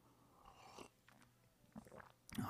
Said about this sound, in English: All right, one sip of coffee and let's go to 24.